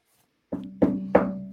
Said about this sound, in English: Yeah. Curveball. You hear that knock? Oh, wait. You know what? Wait. So we're already talking about the Houston Astros. I got my trash can ready to go for this baseball season.